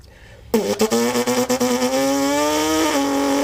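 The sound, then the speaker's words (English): A voice imitates the high-pitched engine of a car whose exhaust is amplified, a 'ricer', starting abruptly with a few sputtering pulses before settling into a sustained, buzzing whine that rises slightly in pitch and holds loud to the end. “That was a pretty good car sound.”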